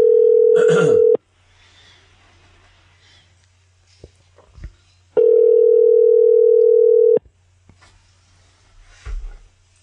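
A phone line rings on an outgoing call, two long steady ringback tones separated by a few seconds of quiet, with faint handling noises in between.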